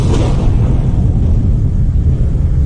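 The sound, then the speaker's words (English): A deep, continuous thunder rumble from a storm sound effect in a campaign video rolls on steadily and loudly for a few seconds, heavy in the low end, with no voices over it. “The editing, including black and white footage as well as storm sound effects.”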